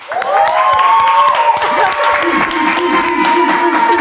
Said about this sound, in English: I think that's the loudest clap we've heard so far.